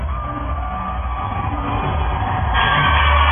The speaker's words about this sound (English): The crowd reaction is pumping.